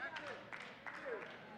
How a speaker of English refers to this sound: Thank you for those 5 claps. Listen, I know I'm thinning out the crowd.